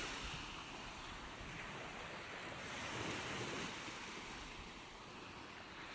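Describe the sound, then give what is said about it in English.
Ocean waves wash steadily onto a shore, a broad continuous rushing with a gentle swell in the middle, mixed with some wind noise and no voices. “And as you breathe in and pause, breathe out, see if you can connect to your own waves, your own rhythm.”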